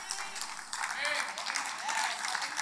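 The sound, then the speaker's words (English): An audience of Muslims claps in a dense, steady burst of applause that fills the room, with some faint voices or cheers mixed in beneath the clapping. “So when I'm in a room full of Muslims, and you all clap your hands, that's nice.”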